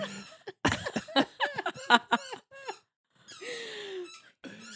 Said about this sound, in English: That was a squeaky toy.